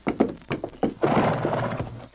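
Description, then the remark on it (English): A few sharp hoof thumps ring out, then Silver, the Lone Ranger's horse in a Lone Ranger radio drama, gives a long, loud, quavering whinny that rises and trembles for about a second before trailing off. “Now we can travel, Silver. Steady, big fella. Come on, Silver!”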